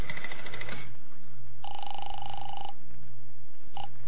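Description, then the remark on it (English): A telephone is dialed to call a hotel with a brief burst of clicks and tones, then a steady electronic ring sounds for about a second, followed by the start of another ring, over a low background hum. “I'll tell you what I'll do. I'll phone the hotel.”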